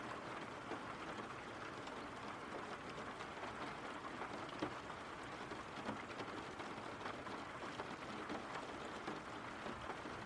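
Steady rain falls without a break, a dense, even hiss of countless drops pattering on a surface, with no voices and no change in intensity throughout.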